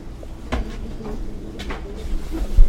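A door in a bakery swings open and shuts with a couple of wooden thumps and latch clicks, followed by a softer knock, against a low background hum.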